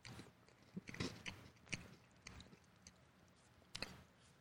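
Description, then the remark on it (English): Muffled wet gulps and sharp clicks of a person swallowing food, recorded with a microphone held against the throat, with a few distinct bursts spaced irregularly over a low, quiet rumble; no talking. “Okay, I had to put the microphone up to my throat as I swallowed it.”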